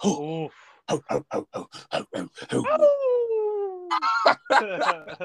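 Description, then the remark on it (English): A person imitates a dog: a quick run of about nine sharp barks, then a long, falling howl and a few more yelping barks, loud. “That movie was like, bro, I feel like barking like all the time.”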